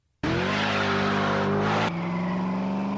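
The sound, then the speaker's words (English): A loud, throaty American V8 muscle car engine roars to life, holding a steady rumbling rev before dropping to a deep idle burble. No one speaks. “That's the unmistakable sound of American V8 muscle that revs the hearts of the young and old alike.”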